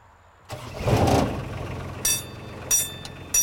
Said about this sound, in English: has been working on the railroad, in this case, an amusement ride version called the Harmony Express.